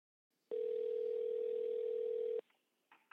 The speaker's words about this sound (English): I guess I'm the technical person who's supposed to be calling, making the phone call.